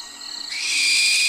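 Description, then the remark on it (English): A barn owl gives a single harsh, hissing screech that swells and holds for almost a second before cutting off, loud with no talking. “This is a barn owl. It's so spooky.”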